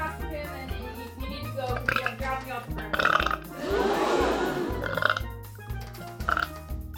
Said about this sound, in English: Did you hear that? I burped too much eggnog.